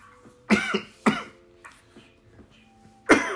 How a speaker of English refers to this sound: I've got to stop coughing.